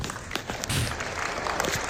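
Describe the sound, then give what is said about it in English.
A crowd at an NRA event, in a Good Liars clip, applauds steadily, a dense wash of many overlapping claps that holds at an even, fairly loud level throughout, with no voices standing out. “And they applaud.”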